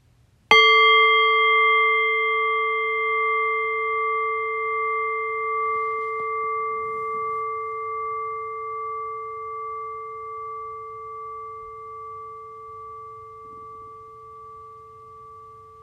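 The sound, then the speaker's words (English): A single meditation bell is struck once, its bright, steady tones ringing out and slowly fading, with a gentle pulsing shimmer across a long sustained decay and no voices. “And so in a few moments' time, then, I'll ring the sound of the bell. The invitation here is to rest awareness on the decay of the bell.”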